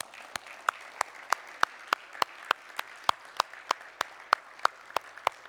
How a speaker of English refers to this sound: Can we give ourselves and the people standing a round of applause?